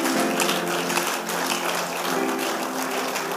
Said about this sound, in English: Hallelujah. Let's give God a clap for the woman of God.